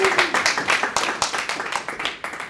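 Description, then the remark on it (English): A small audience bursts into applause for a quiz contestant who scored 2 out of 2, many hands clapping in a fast, dense, steady patter that stays fairly loud throughout with no voices. “Round of applause.”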